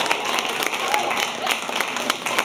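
A live audience at an evening event applauds steadily, many hands clapping together in a dense, continuous wash of sound that holds at an even, fairly loud level throughout.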